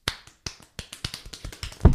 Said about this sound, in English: That's pretty quick. Yeah. That's pretty good. They speed clap like that.